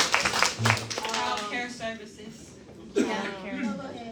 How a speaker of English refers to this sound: Universal healthcare. Yeah. Round of applause.